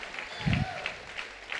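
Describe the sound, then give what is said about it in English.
An audience claps and shouts together, a dense wash of hand claps with a loose repeating beat and a jumble of raised voices underneath. “Clap your hands and shout, I shall not have anxious desire.”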